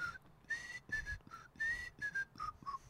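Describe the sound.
A person whistles the theme melody of a 1960 television show, a bouncy, tuneful tune in a series of short clear phrases, each note bright and pure with slight vibrato, fairly loud with no talking.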